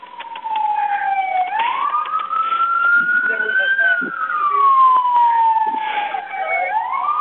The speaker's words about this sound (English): I hear sirens now.